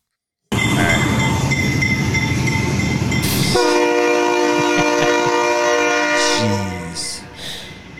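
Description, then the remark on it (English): A train roars past, then its horn blasts a long, loud, sustained chord for several seconds, dropping in pitch as the train moves off and fades. “Right next to a train track. He's blowing the horn.”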